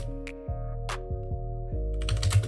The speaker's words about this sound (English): Oh, you're typing. Yeah, I'll typing in a Polish way so you can like kind of understand it.